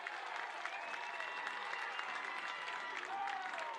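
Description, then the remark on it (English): A large crowd cheers and applauds after a diving catch and double play at a ballgame, a steady, loud wash of clapping and shouting that holds at an even level throughout, with a few rising whoops on top. “Nice crowd reaction just there.”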